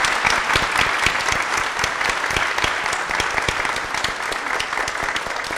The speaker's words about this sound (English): So let's give our children's ministry interns a wonderful applause.